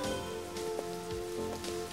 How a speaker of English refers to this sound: At least with this rain, I won't need a shower when I get home.